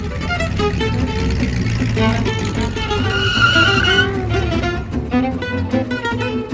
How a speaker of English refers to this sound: Alrighty, you hop into that 1925 Stutz Series 695, the coolest hot rod around at this time, and you pull out and begin to follow this black automobile out of the movie lot.